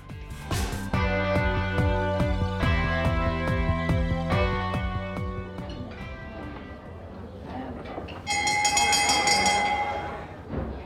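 A dinner bell, used to cue a weekly dinner party question segment, rings out after a run of loud, sustained tonal chords, its bright, high, shimmering clang holding steady for a couple of seconds before fading. No one speaks.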